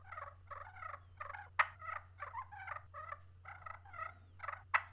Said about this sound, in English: And good gosh, man. I mean, I know it's a purr pot, but some of these purrs are ridiculous.